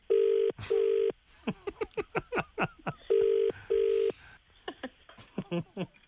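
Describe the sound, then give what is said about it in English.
A telephone rings in loud double bursts, two rings in quick succession, repeating twice, with people talking in between. “He's ringing me now.”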